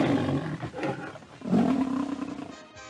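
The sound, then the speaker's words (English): A lion roars twice in quick succession, loud, each a deep growling bellow that swells and fades, with no voices around it; the roar of the MGM film studio logo. “MGM was the lion of Hollywood, the Cadillac of studios.”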